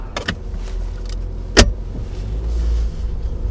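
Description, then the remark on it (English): A rented car driving from Hartford, Connecticut toward Manchester, Vermont: a steady, low rumble of the car rolling along a road, heard from inside, with two sharp clicks breaking through the drone. “So we flew to Hartford, Connecticut, and rented a car and set off for Manchester, Vermont.”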